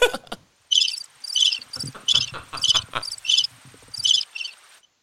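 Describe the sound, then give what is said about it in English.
Cricket chirping sound effect triggered from a preset on a broadcast mixer: bright, rhythmic bursts of high-pitched chirps repeating steadily for several seconds, fairly loud, with soft low rumble underneath and no voices. “Corbs just hit the cricket's preset on the mixer while you were talking, Dano.”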